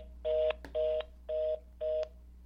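A phone line's disconnect tone as a call hangs up: four short, evenly spaced electronic beeps at a steady pitch, fairly clear, with no one talking.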